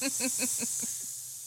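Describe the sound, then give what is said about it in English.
A person imitates a snake with a steady hiss in a studio on the Saturday Friends Club, broken by about six quick voiced pulses in an even rhythm that fade away as the hissing trails on. “Are we all just going to be pretending to be snakes?”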